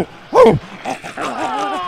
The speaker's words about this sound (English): Oh my God, are you barking?